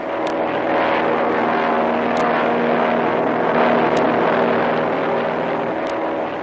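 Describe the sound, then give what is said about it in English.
A propeller airplane engine drones loudly and steadily throughout as the plane descends and circles a spot over the sea, a rough low hum with a layered tonal buzz, broken only by faint sharp ticks roughly every two seconds. No one speaks. “I'll drop down, and then we'll circle this spot a couple of times.”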